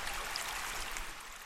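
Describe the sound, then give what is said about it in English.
Water trickles steadily into Lake Menindi in Australia, the first flows to enter the lake in 5 years after it was bone dry, coming down the Barwon-Darling-Barker rivers from southern Queensland and northern New South Wales. A soft continuous babble with bright splashy hiss and faint gurgles, quiet, with no voices. “If you said the trickles of the first flows to enter Lake Menindi in 5 years, you'd be right.”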